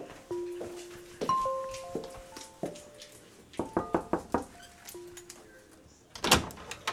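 wooden door opening

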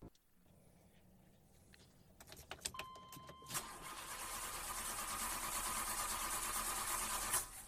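car engine cranking

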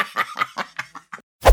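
sneeze

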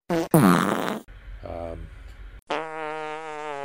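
fart sound effect

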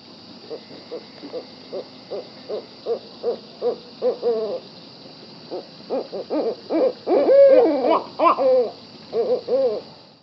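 barred owl hooting calls

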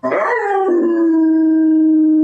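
dog howling

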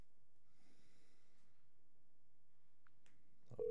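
telephone dialing tones

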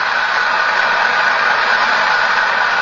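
opera audience applause

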